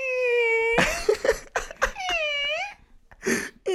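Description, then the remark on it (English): Someone vocally mimics a creaking door: a long, steady squeal, then a run of breathy, rasping bursts and a wavering, pitch-bending squeak, ending with one short gritty burst. “I love trying to impersonate that door sound.”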